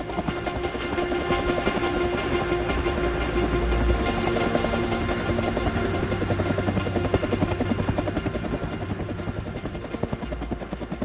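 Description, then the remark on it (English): A helicopter roars steadily, its rotor producing a dense, pulsing thrum and engine whine that stays loud and constant throughout, with no voices. “I heard the helicopter.”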